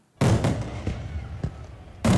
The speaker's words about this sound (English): It's the season of fireworks, or has been, but are fireworks fading?